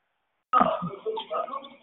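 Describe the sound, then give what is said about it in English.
After a brief silence, a burst of muffled, tinny transit-station commotion comes through an unmuted phone line on a group call, with indistinct voices and clattering noise that rises and falls for over a second. “You at the bus terminal, honey. You walking into the BART, go on, mute your phone.”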